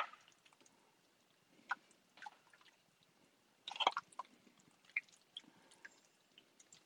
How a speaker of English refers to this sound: We've got about 2 pounds of chicken here. We're just going to lay it in the pot.